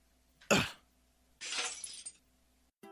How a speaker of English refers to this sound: A puff of pale smoke rises from the broken glass pellet, enveloping the man's head.